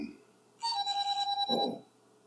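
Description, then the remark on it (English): A mobile phone ringtone chimes briefly with a bright, pulsing electronic melody for about a second, fairly loud, with a faint voice murmuring near its end. “My phone refused to go on silent.”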